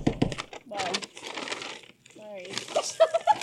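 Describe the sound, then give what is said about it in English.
Crinkly rustling of packaging as a woman tears and pulls open a bag holding a keyboard mouse pad, a series of irregular crackles and scrapes, with voices murmuring partway through. “And now the moment of anticipation. She's going to open it.”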